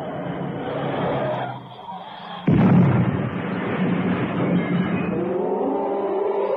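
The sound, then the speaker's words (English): A car engine drones along, then a sudden loud crash hits about midway as the car swerves into a rock face at a bend, followed by a lingering rumble and a steady tonal whine as the noise settles. “Cannon's car had swerved into the rock face”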